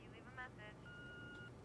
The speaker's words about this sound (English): It beeps, cuts me off again, right? So, of course, he's got to call back.